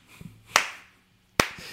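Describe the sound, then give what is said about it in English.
A few sharp, scattered hand claps from a small group sound fairly loud, two standing out clearly, with no steady rhythm and no talking. “We already just clapped for you, man.”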